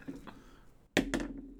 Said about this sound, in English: Gotta throw out those dice.